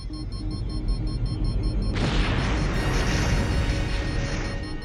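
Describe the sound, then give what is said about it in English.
Two alien enemy spaceships, badly damaged by a big blue torpedo fired by a Starfleet vessel, explode as their engine cores destabilize: a low, steady rumble gives way to a sudden loud roaring blast, its crackling hiss sustained for nearly three seconds before fading slightly. No one speaks. “Both enemy craft are badly damaged. Their engine cores are destabilizing.”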